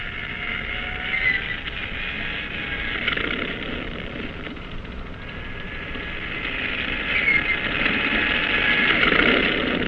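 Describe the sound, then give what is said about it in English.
A seaplane's propeller engine starts and drones steadily and loudly throughout on a cruiser's catapult, a continuous buzzing roar that swells slightly toward the end, with no voices. “Start engine. Stand clear. Turn over.”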